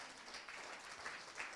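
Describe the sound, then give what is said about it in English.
An audience applauds together to thank the people who helped on Friday night, a steady wash of many hands clapping at once, sustained and fairly even throughout, with no voices standing out. “I want everyone to give them a round of applause.”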